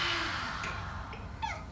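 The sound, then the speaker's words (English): A deep breath drawn in through the nose and let out through the mouth during a breathing exercise, a steady airy rush of air lasting under two seconds, with no talking over it and a faint squeaky tone near the end. “Take a big breath in through the nose, out through the mouth.”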